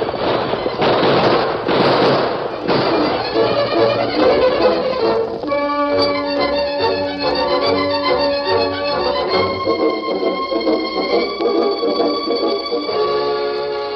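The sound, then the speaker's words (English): Loud, rapid gunfire cracks out in a dense volley of sharp bursts for several seconds, then gives way to a sustained stretch of dramatic music. The Lone Ranger, riding his white stallion Silver, sweeps into a firelit camp with guns blazing. “Like a hurricane, the Lone Ranger and Silver swept into the firelit camp, guns blazing.”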